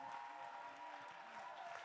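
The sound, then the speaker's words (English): An audience claps in response to a call to shout and clap, a steady, dense wash of applause, with a faint murmur of voices and a held tone running beneath the clapping throughout. “Somebody shout. Somebody clap.”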